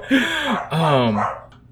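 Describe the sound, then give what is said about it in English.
A dog barks twice, each bark drawn out into a wavering, almost howling yowl, loud and clear with nothing else around it. “The dog also knows the voice from somewhere.”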